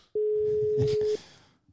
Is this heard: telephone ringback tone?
yes